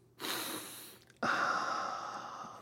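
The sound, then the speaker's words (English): A long, loud nasal sniff, broken by a brief pause and then continuing in a second, stronger inhalation, with no talking. “That was a really long sniff.”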